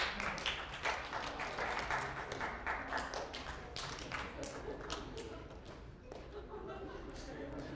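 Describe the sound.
A lecture audience claps in scattered, uneven bursts as each person spots the difference between two flickering pictures in a demonstration, many hands striking at irregular moments rather than in rhythm. The clapping stays fairly steady throughout, with a faint murmur of voices underneath.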